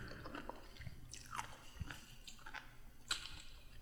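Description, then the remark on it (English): Crunchy chewing with repeated bites and wet mouth sounds, a steady munching rhythm with sharper crackling bursts, heard alone without talking. “Why does everything sound so crunchy to me right now?”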